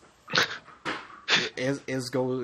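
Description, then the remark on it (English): A pet dog barks five times in quick succession, fairly loud. The first barks are sharp and rough, and the later ones stretch into whiny, yelping calls. “My dog's saying hi to everyone.”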